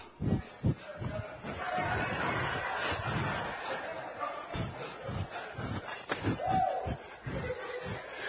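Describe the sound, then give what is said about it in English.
An audience stomps their feet, heavy irregular thuds pounding out over a steady murmur of crowd voices and scattered shouts, the bursts loud and booming throughout. “All the people say, stomp.”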